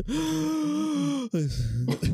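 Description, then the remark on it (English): A loud voice imitates deep heavy breathing with a long, groaning, voiced exhale, a brief catch, then a second drawn-out breath. “Your deep breathing.”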